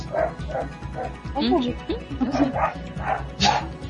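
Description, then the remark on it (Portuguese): A female dog barks repeatedly, a steady string of short, loud woofs mixed with higher yipping and whiny sounds, carrying on for several seconds. “A cachorra quer dica”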